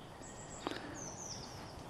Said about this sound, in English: That's that woodpecker again. Should we listen? Yeah. The woodpecker.